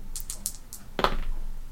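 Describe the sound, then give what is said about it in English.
Dice rattle down a dice tower: a few quick, light clicks tumble through, then a louder clattering burst as they land and settle briefly. No one speaks. “Do you want me to roll on the dice tower?”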